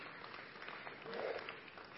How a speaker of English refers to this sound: Only Jesus. Yeah, that's something you should clap about. Right?